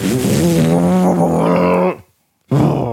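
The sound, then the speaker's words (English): A voice imitates an airplane engine revving: a loud, sustained buzzing drone with a low rumbling pitch that holds for about two seconds, cuts off briefly, then starts up again. “They rev it up. He said, okay, we're going to try it again. Just rev it.”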